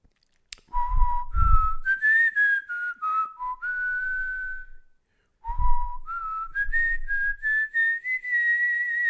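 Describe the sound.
A person whistles the theme tune from an old TV programme's opening titles, two similar phrases separated by a short pause, the notes rising and sliding in pitch with a few breathy thumps at the start of each phrase.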